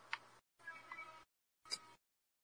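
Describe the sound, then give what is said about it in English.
A cat meows three times in quick succession, short cries with a longer drawn-out one in the middle, faint, with no talking. “Meow, meow.”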